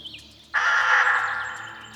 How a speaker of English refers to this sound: The crow let out a deafening screech, like the sound of a rusty saw on sheet metal.